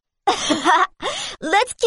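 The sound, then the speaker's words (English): A fairly loud voice croons in four short, raspy bursts, mixing wavering sung tones with a groaning, snore-like rattle, singing in a way that sounds like snoring. “It's the first time I've heard someone singing, like snoring.”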